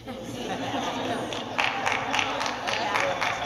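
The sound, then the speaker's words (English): A crowd murmurs, then scattered applause breaks out partway through, claps rising over the background chatter of a room full of people. “Thank you for that applause.”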